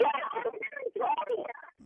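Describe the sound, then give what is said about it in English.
Garbled, tinny voice of a caller over a phone line, narrow-band and choppy, with words too distorted to make out; two bursts of broken speech with a short dropout between them. “Phone issues there, I think. Got some phone issues.”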